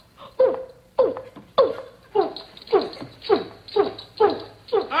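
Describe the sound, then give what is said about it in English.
A voice imitates an orangutan with a rapid series of about nine loud hooting calls, each sliding up and down in pitch, repeated in a steady rhythm with no other talking. “Make a noise like an orangutan.”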